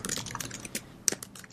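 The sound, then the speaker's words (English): Soft, irregular clicking of keys on a computer keyboard as someone types into a Google Doc, a quick run of keystrokes at low volume, with no one speaking. “Unless Doug has a keyboard accessible.”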